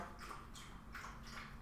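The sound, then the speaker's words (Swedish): A dog laps water from a bowl in soft, quick, wet slurps, a steady run of about four fairly quiet laps with nobody talking. “Nu låter det som att någon som slickar någon. Det är hunden som dricker vatten.”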